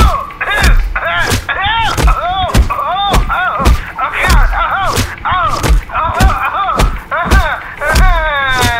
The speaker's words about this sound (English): She wouldn't stop punching me! I did not punch you. I did not fucking deck you. I fucking was hitting you. That's the definition of punching, you bitch!